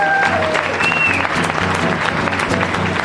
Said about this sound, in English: You missed out at the time here in the Leicester Square Theatre. Thanks very much to our audience of freaks. Give yourself a round of applause.